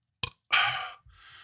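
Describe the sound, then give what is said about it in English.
A raspy burp: a quick short blip, then a longer rough belch lasting about half a second, trailing into a softer breathy exhale. No talking. “See how upset you'd make me? Give me the burps.”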